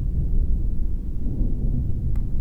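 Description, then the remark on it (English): A deep, continuous rumble of thunder rolls through a storm of green lightning flaring from the static energy of a dome, loud and heavy in the low end, with a brief sharp crackle near the end. “Just as they cross the threshold, the static energy radiating from the dome flares to life, creating a maelstrom of green lightning.”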